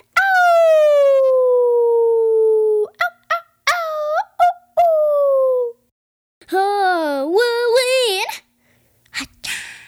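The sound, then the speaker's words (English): A voice imitates wolves howling: a long, steady, slowly falling howl, then a few short yips, then a wavering howl that rises and falls, all fairly loud. “You see the stars and the moon and the wolves. Wolves keep howling as it go.”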